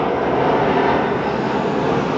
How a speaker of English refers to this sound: Fuck! How many airplanes are going to fly over this part of town? Miami. Because the airport's in the center of the town.